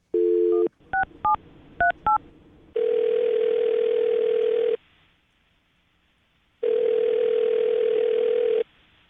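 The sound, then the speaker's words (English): A brief dial tone, then a quick run of touch-tone keypad beeps as a phone call is placed, followed by two long ringback tones separated by a pause of silence, clear with no talking. “Well, I'm going to call her right now, see if we can get her on the phone, and then get your second date, okay?”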